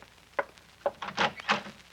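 Several knocks on a hotel suite door, four dull wooden raps in an uneven rhythm, the last two a bit fuller and louder, with no voices.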